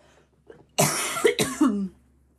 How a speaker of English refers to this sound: Sorry for my coughing.